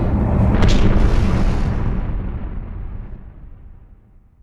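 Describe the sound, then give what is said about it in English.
A shooting star crashes into the earth with a massive, thunderous explosion, a deep rumbling roar that slowly fades away over several seconds as the booming low-end dies down. “And then they cover their faces from the thunderous explosion as the bulk of the shooting star makes contact with the earth beneath the Anodyne Pines.”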